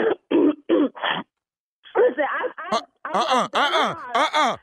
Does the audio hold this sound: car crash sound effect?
no